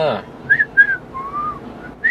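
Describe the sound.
Someone whistles a short, lilting tune while polishing a shield in the morning: a few quick pitched notes followed by a longer sliding tone, clear, with no one talking over it.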